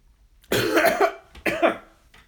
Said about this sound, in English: Oh, shit. I think I went down the wrong tube. Sorry about that. Man. Seltzer will mess you up.